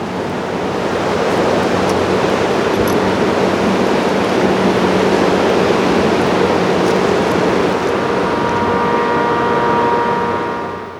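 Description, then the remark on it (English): A river rushes steadily and loudly in mid-March, with snow still on the ground, a continuous broad roar of flowing water that fills the whole recording without pause, with no one speaking. “You can hear the water flowing past and the snow crunching beneath our feet as we walk on the path.”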